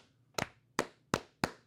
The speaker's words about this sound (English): Slow clap for Sam. Good job, Sam.